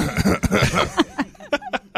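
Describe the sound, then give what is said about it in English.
A man, a college hockey broadcaster, coughs several times in quick, rough bursts, with short wheezy breaths between the coughs and no talking. “Well, when he's not coughing, he's the voice.”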